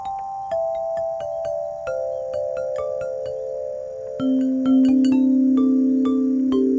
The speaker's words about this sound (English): Another fun feature of Rotary Hill is Harmony Park, where anyone can play the bells and xylophones, and music from the instruments often floats down to the paddleboat quarry.